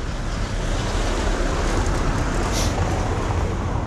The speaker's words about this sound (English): So I'll just stop talking basically when the cars get close enough until they've passed.